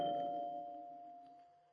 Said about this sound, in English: I don't think that doorbell took the first time.